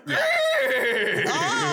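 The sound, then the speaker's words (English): A voice imitates a wheel-and-horse contraption screeching to a halt: a loud, strained, whinny-like squeal held for almost two seconds, wavering in pitch near the end. “The sound was the wheel / horse monstrosity screeching to a halt.”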